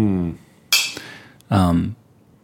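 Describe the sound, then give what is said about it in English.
Glasses clink together twice in a toast, bright, each ring fading quickly; a voice murmurs before the first clink and overlaps the second. “I just want to say, I would like to end it by saying, well, cheers.”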